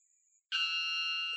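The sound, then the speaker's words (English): After a faint high whine, a piercing metallic bird call of 125 decibels, as loud as a pneumatic drill, bursts in abruptly and holds loud and steady, ringing like a fire alarm until the end. “Sounds like a piece of metal hitting another piece another of metal.”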